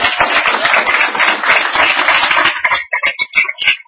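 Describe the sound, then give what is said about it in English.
An audience at a live broadcast of OC Talk Radio, Orange County's community radio station, at Brandon University applauds loudly with dense, steady clapping that thins out near the end into a few scattered individual claps. “Give everybody a round of applause here.”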